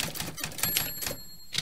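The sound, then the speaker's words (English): Rapid clattering keystrokes on a mechanical keyboard, a busy run of sharp clicks with a brief pause near the middle and a faint metallic ring. “Well, I've got a plinky plonky keyboard because why not, really?”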